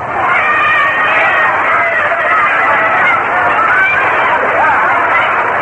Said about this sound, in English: Foul ball, back and out of play. So the count is two balls and two strikes, and there's a crowd reaction to the play on the foul ball in the stand.